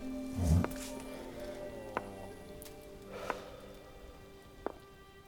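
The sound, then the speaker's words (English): Steady rain falls in a soft, even hiss, with a few sharper drips tapping at irregular moments and a brief dull thud near the start. “Blasted rain.”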